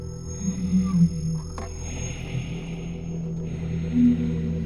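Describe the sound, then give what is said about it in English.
Gravelly, throaty breathing from a figure at a front door opened about six inches rasps on without pause, a low growling rumble under a faint airy hiss, swelling louder briefly early on and again toward the end. “And I heard the breathing, the same gravelly and throaty noise from the phone.”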